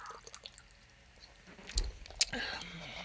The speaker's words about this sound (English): It looks like punch, right? Yeah, I see the color inside. It's dark red. Yeah, I'm going to go ahead and take a sip in 3, 2, 1.